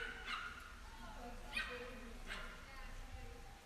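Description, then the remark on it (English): Dogs bark in the background: three sharp, spaced-out yaps over a quiet, low background hum, with some faint whimpering yips between them. “you hear the dogs barking in the background?”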